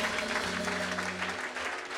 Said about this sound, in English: so clap for them once again.